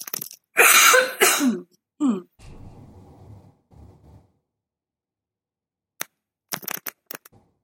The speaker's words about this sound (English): I still have like lingering COVID cough.